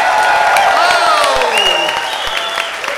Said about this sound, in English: Ladies and gentlemen, Mr. Pete Holmes, give him a big round of applause.